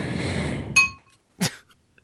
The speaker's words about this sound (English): Is that a real bell? That is the bowl I used for some ice cream. Okay. I was going to say. It's an old bell.